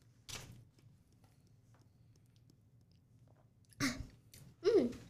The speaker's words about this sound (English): And she judges your chewing. Mm-hmm. So about your chewing? You're like... I do not chew like that.